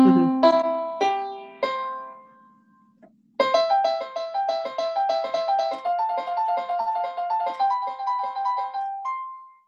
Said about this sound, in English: So you got the airplane, airport chime at the beginning.